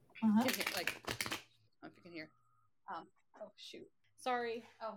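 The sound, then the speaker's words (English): A deck of crow tarot cards being shuffled, a quick burst of riffling and slapping followed by softer shuffling sounds, with a person talking intermittently over it. “I'm going to shuffle here”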